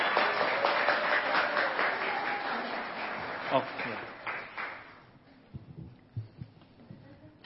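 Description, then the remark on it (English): A crowd gives a round of applause for the speaker's sister and mother as they come up to speak, a dense steady wash of clapping that carries for several seconds before thinning out and fading, leaving a few scattered soft thumps. “So let's give a round of applause for my sisters.”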